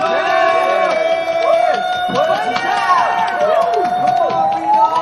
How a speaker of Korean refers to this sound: 자, 모두 박수!